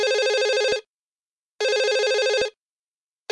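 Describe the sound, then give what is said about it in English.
A telephone rings in two loud bursts of warbling electronic trill, each lasting under a second with a pause between, and a third ring just beginning at the end. “I have a reverse charge phone call for Henry Applebaum.”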